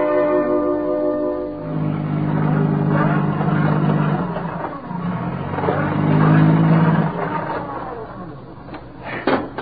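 A car engine revs hard in long, repeated surges, its whine rising and falling as the wheels spin without grip with the car stuck in a ditch. Loud, with no voices.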